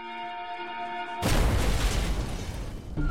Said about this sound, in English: The explosion itself had almost completely destroyed the home. One of the neighbors said it felt like an earthquake.